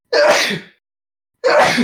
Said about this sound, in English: Sniffle-dee-dee, sniffle-dee-doo. Listen to me while I sniffle at you. He's allergies.